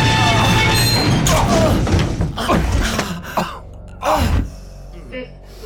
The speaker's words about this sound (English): The elevator shook to a halt as the red emergency light activated, bathing the elevator in crimson.